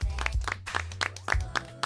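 An audience claps in a steady, quick rhythm, sharp crisp claps arriving several times a second at moderate loudness over a low steady hum, with no voices.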